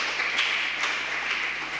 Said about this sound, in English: It's kind of weird to be clapped for that. Thank you.